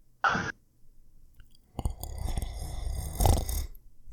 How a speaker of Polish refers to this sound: Starcze chrapanie.